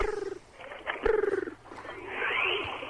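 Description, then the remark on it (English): A person imitates a pigeon's cooing, with warbling, throaty coos in a few short bursts, moderately loud, with no other talking. “Wow, there's pigeons in the office.”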